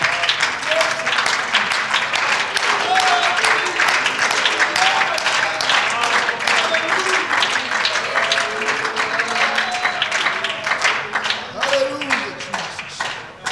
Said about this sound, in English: Can we give him a hand clap of praise in this place tonight?